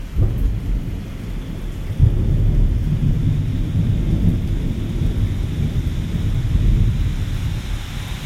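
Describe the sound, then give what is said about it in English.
Steady rain hisses over a deep, rolling rumble of thunder that swells and lingers, with a sharper crack around two seconds in, on a rainy night in Reading, Pennsylvania; no voices, just the storm. “On a rainy night from Reading, Pennsylvania, we bring you the sounds of God.”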